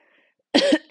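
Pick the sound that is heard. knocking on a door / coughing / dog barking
coughing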